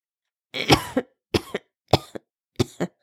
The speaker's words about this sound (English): That cough did not sound good. The king held his chest while he coughed a bit more.